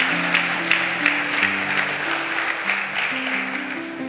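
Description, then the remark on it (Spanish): An audience claps loudly and steadily for about four seconds, a dense wash of hands with a few sharper peaks, while low sustained keyboard chords shift underneath. “Si usted lo cree, dar un aplauso fuerte, Señor.”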